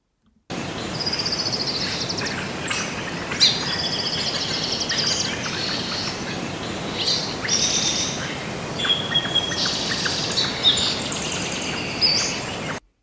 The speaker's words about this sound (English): Okay, so so real birds or fake birds? Well, number one was loads of birds. And it had lots of background noise in it and such.